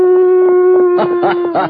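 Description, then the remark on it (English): A person practicing holds a steady, reedy vocal tone in imitation of a coyote howl, with rough, warbling yips breaking in over the second half. It's fairly loud, and the note never rises or swoops. “This has to be a coyote.”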